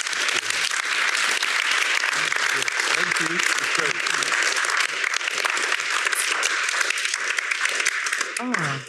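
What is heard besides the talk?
audience applause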